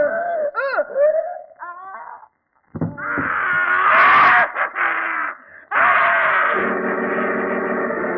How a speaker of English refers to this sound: did you hear that? That scream? Yes, I was in bed when it came. Positively ghastly, too.